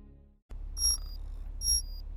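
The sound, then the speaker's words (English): Two bright, high-pitched electronic chimes sound in quick succession over a low hum, each a short layered tone with a lingering higher note, like a digital wake-up alarm; an internal conduction alarm going off at 5:35 Coordinated Universal Time. “This is your internal conduction alarm.”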